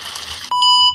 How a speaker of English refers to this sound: We got beep.